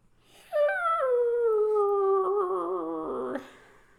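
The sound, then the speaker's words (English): A person's voice imitates a dog howling: one sustained, wavering howl that slides downward in pitch and rises again at the end, loud, with no other sounds. “The eyes opened, but I want to clarify that was not the dog. No, that was me.”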